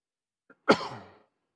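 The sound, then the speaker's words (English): A single sharp cough into the microphone by a preacher during a church service, preceded by a faint catch of breath, with a burst of noise that quickly decays. No talking. “Sorry back there in the sound booth for coughing into the mic.”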